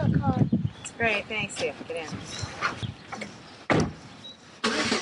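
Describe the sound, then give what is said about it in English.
People talk over a car's low rumble, then sharp bursts break in near the end as the engine cranks and catches, settling into a steady idle, as a mother sets off to drive her three daughters out of Lansing to school. “driving her three daughters out of Lansing for school.”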